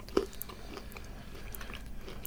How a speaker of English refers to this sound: When you bite into it, it doesn't like crumble. It just like snaps.